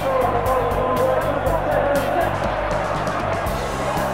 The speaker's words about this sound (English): Bolton 2, Torquay United 1, and just listen to the roars of delight from this large Bolton following.